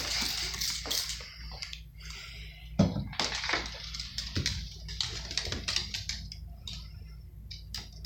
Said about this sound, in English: You know, I hate to squirt you with the squirt bottle during a windstorm, but I mean, you can't keep taking her treats, man.